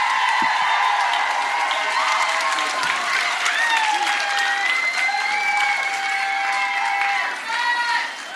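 A live audience breaks into loud, sustained applause, dense clapping going on for several seconds, with scattered cheers and whoops rising above it before it starts to taper off.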